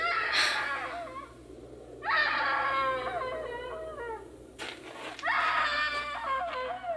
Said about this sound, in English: Hey, screaming woman. Why didn't you scream before? Why didn't you scream so Daddy could hear you?